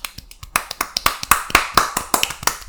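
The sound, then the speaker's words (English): A single person claps quickly and unevenly to mark the end of a movie, about a dozen sharp claps in under three seconds, moderately loud with no voices over them. “I will give this a modest applause.”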